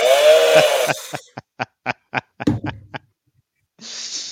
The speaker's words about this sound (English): The chainsaws will be out at Research Stadium on Saturday. And I'm going to laugh about that little toy chainsaw.